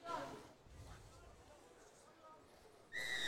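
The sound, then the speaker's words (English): A sharp, steady referee's whistle blast, blown for the kick-off of a match against the Bulldogs, rings out near the end, loud and clear above a constant murmur of stadium crowd noise. “And that's the whistle, and we're away.”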